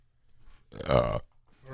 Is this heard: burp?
yes